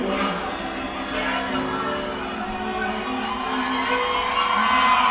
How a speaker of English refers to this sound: I was going to hit the round of applause, but they did it for me.